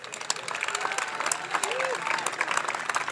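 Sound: audience clapping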